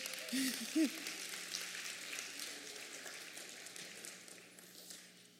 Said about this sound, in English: It's the best servant. Give the servant a hand.